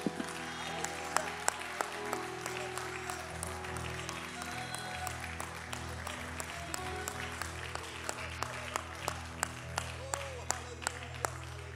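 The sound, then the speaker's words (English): A crowd claps their hands to the Lord and shouts unto God steadily for several seconds, a dense wash of hand claps with sharp individual claps standing out, mixed with scattered voices shouting and cheering underneath. “Could we clap our hands to the Lord and shout unto God with a voice of triumph for a moment?”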